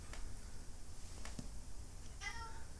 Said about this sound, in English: God, I hate that cat so much.